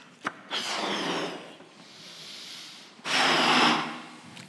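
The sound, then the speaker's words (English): Two long, forceful exhales as children and adults blow up balloons, each a breathy rushing burst lasting about a second, with a short click just before each one and quieter breathing between. “So everyone, if you got a balloon, now's the time you bring it out, adults as well.”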